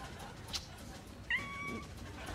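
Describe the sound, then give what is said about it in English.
A single cat, Cinnamon, meows: a short rising then sustained tonal cry over a steady low background hum, with a brief sharp click just before it. “Arming stray cats who live on the mean streets. Isn't that right, Cinnamon?”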